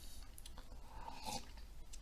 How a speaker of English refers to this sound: Just having a sip of my coffee. Yeah, this is good stuff.